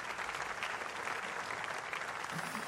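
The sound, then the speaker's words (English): Steady applause from a crowd, many hands clapping in a dense, continuous crackle at a fairly loud, even level throughout, with no individual claps standing out and no voices on top. “Are you clapping? Works every time Scott needs a clap.”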